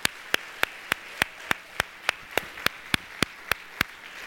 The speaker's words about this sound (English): So for those of you that worked sessions, can I just, if you worked this week in any way or you helped in decorations, would you just stand up this morning? Can we just recognize and I want you to just give a round of applause this morning.